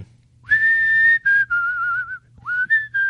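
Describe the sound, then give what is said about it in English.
A person whistles a short melody from a rock song, clear, with sustained pure notes that glide and step between pitches in a few phrases, no talking. “Songs that have whistling in them, I like those.”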